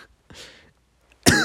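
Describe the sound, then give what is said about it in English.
A soft, breathy cough followed after a short pause by a louder, harsher cough, with no talking. “God, I'm coughing again.”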